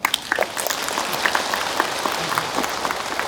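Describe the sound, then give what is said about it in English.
An audience claps steadily for a few seconds to answer that no one is seriously sick, a dense patter of many hands with no voices over it, consistent in loudness. “Yes or no? If no, just clap.”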